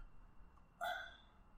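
A single sharp hiccup breaks a quiet background, its throaty squeak fading quickly over about half a second, with no talking.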